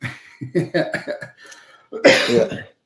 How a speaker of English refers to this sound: Sorry, I've got a cough here.